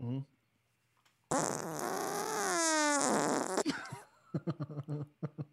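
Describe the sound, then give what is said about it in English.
A loud, drawn-out fart lasting over two seconds, buzzy and sputtering with a wavering, sliding pitch, followed by quick bursts of people talking and laughing. “Here's the third fart.”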